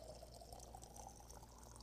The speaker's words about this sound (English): I didn't really make coffee. I just ran hot water through here. So I want to pour it up into this mason jar. All right. So here we go.